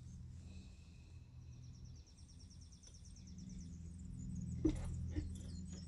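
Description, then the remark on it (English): Faint birds chirp and twitter in quick repeated trills over a steady low outdoor rumble, with a couple of brief louder knocks near the end and no talking. “So let's just take a moment to take a breath and listen to the birds.”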